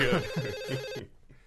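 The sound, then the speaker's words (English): A phone's ringback tone purrs on an outgoing call to John Laurinaitis, a steady electronic ring that cuts off abruptly after about a second, leaving faint line noise behind. “Why don't you get him on the line? Yeah, give him a ring. I'm dialing.”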